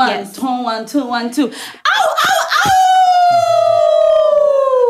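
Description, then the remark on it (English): Someone laughs and yelps, then lets out a long, loud howl that holds steady and slowly sinks in pitch, imitating a wolf or dog. “Enough howling.”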